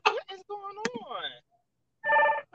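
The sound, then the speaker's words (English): A phone rings with a single steady, loud electronic trill near the end, following a brief stretch of warbly, garbled voice-like sound. “Why is my phone sound like that ringing?”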